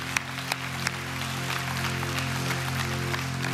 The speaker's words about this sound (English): Awesome. I'll clap for that. Beautiful.